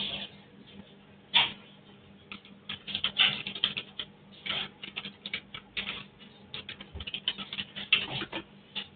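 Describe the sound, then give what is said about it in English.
Rapid, irregular clicking of someone typing on a computer keyboard, continuing steadily throughout with a few louder keystrokes, slightly muffled and tinny as if picked up through a call microphone. No one speaks. “whoever is typing in the background, please smooth out.”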